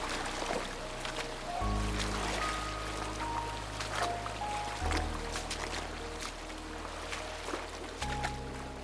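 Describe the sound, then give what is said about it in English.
Swift, shallow creek water rushes steadily over rocks, a continuous hiss and splash with small bursts, while a soft, low musical drone sits underneath throughout. “It's sometimes hard to get a solid step in without rushing water pushing my foot off the rocks.”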